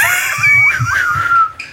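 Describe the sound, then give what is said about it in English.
A voice lets out a loud, high, wavering wail in imitation of a screaming baby, about two seconds long and rising and falling in pitch before trailing off. “Somebody can get to screaming or something.”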